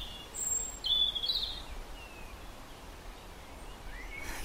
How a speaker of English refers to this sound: There's always birds having a go at each other here, brawling in the village square. Chasing each other, right on cue there, chasing each other up and down. Courting. Carrying worms back in their beaks, insects, like shopping.